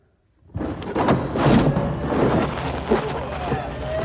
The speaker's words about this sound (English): All right. I think this is it. I'm going to have him open up the door.